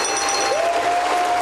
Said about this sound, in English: Honestly, Tripwire Interactive, I want to give you a round of applause. I want to give you a ding-woo.